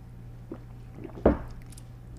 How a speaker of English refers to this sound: So, because of that, we're going to take a shot. It's fucking noon. But we are taking a shot of whiskey for Anna, so hell, cheers.